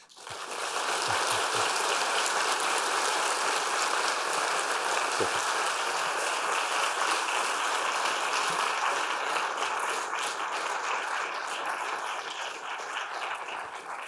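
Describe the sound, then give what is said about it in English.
An audience applauds steadily for about fourteen seconds as Dr. Goodall is welcomed, a dense, even wash of many hands clapping that stays loud throughout and eases only slightly at the end, with no voices. “Yes, I'm not here taking her applause.”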